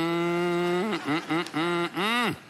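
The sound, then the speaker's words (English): A person imitates a cow's moo: one long, steady low tone, then a few short wavering bursts, ending in a drawn-out note that bends down and fades. It is fairly loud, with no other talking. “Are you doing? Or just mooing?”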